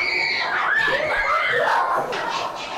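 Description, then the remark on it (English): Several children screaming and shrieking together in a sustained, high-pitched, loud burst, with overlapping squeals rising and falling over a noisy background. “Oh, my children are screaming.”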